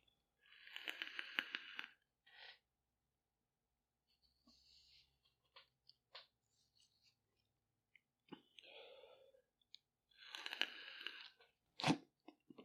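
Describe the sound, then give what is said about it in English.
Two breathy rushes of air, each lasting over a second, with soft clicks and small mouth sounds between them, like someone drawing on a vape and blowing out vapor. Nobody speaks. “Also going to get some vapor, because, hey, why not, right?”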